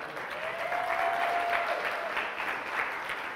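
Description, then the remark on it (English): A crowd claps for a video in a steady, dense, even wash of applause that holds at a fairly constant level for a few seconds, with no one speaking. “Also, how about a round of applause for my sister in her video?”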